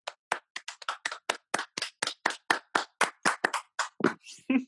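Brisk, steady hand clapping, around twenty sharp claps in quick even succession, fairly loud with no talking over it, ending with a slightly softer, scuffed clap.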